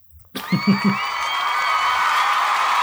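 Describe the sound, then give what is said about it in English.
Audience applause and cheering for an act called a stack of Goombas break out suddenly and hold steady, a dense wash of clapping with high whoops and sustained shouts riding on top, loud throughout. “And keep that applause rolling for your next act.”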